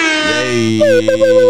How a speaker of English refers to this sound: Air horn one time.